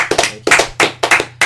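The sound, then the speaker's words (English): Sharp hand claps in a quick, steady rhythm, about eight crisp slaps in a second and a half, fairly loud with no voices, like a brief round of applause from a small group, given for a man who just got a job. “But give him a round of applause for getting this job.”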